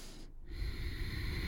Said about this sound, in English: And if you wanted, you could make this breath a little noisy by constricting the back of your throat as you exhale, so you have the subtle sound of H or this hissing sound.